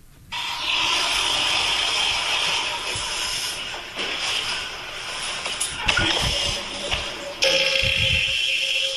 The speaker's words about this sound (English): Are we playing Guess Who Farted? That's my choice. Very aggressive. That is a very, very aggressive. I smell that one right now. I smell that.